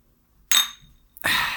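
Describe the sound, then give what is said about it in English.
Two sharp, bright clinks of empty glass bottles knocked together, the first ringing out and fading, the second following about three-quarters of a second later, fairly loud. “Let's actually dink the empty bottles, because it'll be a better dink than if we dink our glasses.”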